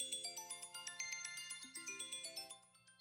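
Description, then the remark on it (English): An iPhone alarm tone plays on its own: bright electronic chimes pulsing in a quick, steady rhythm, shifting through a short repeating melodic pattern, fairly loud. “Whoever the engineer at Apple who made the iPhone alarm, he needs to be, like, hung, drawn, and quartered.”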